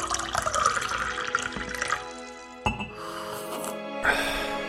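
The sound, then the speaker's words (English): Tea pours steadily into a cup as a top-up, its gurgling tone rising as the cup fills, broken by a brief clink partway through before the pouring resumes. “Could I possibly have a top-up”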